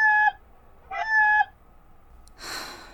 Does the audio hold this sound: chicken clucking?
yes